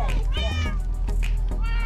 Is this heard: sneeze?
no